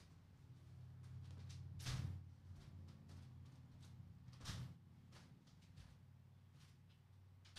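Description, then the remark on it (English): A door is unlocked and opened by a man who had just locked himself out: scattered small clicks and rattles with two louder clunks, over a steady low hum, and no one speaking. “But he's going to, he just locked himself out.”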